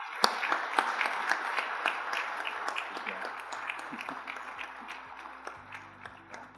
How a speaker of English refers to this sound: Okay, let's have a round of applause for our panelists.